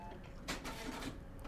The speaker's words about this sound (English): If I could just get this fossil of a printer to work. Oh, here, let me.